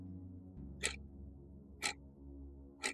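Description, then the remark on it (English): A clock ticks three times at a steady one-per-second pace, each tick crisp and distinct, over a low, droning musical hum with no voices. “But right now, for the Slender Man Stabbings, When Death Imitates Art, let's start the clock.”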